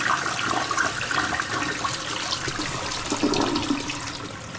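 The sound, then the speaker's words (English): A toilet flushes with a steady, loud rush of churning water that continues for several seconds, with no one talking. “Flush again. Just keep flushing.”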